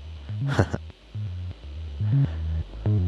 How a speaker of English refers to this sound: Now you'll hear that there's some noise in there, and that's just because I'm feeding in a sine wave and there's not much of a high harmonic there, or any at all really, to boost.